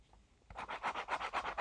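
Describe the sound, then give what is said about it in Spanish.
A black pen scratches quickly back and forth across paper in a book, crossing out the day in about eight rapid, rhythmic strokes after a brief quiet moment. The dry, raspy sound is moderately loud, with no talking. “Y entonces ahora voy a usar un boli negro para cruzar el día.”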